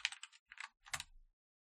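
Quick bursts of computer keyboard typing, a few clattering keystrokes in short clusters with brief pauses, fairly close and clear, with no voices.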